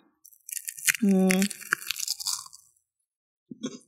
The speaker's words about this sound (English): I'm just chewing with my mouth open. Not cute. I don't even care. This is really good. It's so good. I need to know more about these crackers. Yeah, these crackers, these little ones, really good. They're buttery.